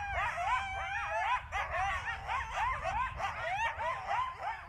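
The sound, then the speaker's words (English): A pack of coyotes yips and yaps in a frenzied chorus, overlapping high wavering howls and sharp yelps rising and falling continuously, loud, with no talking. “Or the hair-raising, bone-chilling yipping and yapping of a pack of coyotes.”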